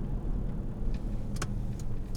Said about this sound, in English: Sorry, this is kind of loud. Let's turn down the air conditioner.